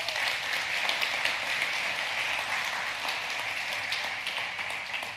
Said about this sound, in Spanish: Oye, yo creo que Dios se merece un aplauso después de eso.